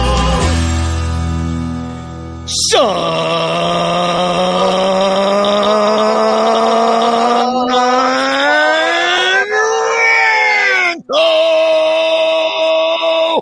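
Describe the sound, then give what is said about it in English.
A man screams a name loudly, holding one long drawn-out yell for about ten seconds, his pitch swelling upward near the end before breaking off abruptly. “Screaming my own fake name.”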